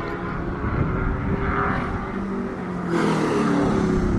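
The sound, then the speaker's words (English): A Corvette drives past with a low, steady engine hum and rushing road noise that holds even throughout, then swells slightly louder toward the end. No one speaks. “That's a Corvette, and it's just really dead quiet going around.”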